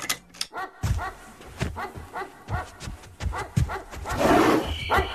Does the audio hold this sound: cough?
no